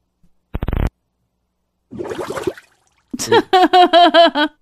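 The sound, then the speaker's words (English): Three loud, buzzy fart noises in quick succession: a short sharp rasp, a sputtering middle one, then a long wobbling blast that sounds voiced, as if blown with the mouth. “Farting loudly.”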